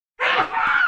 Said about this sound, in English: Bless you. That was a loud one.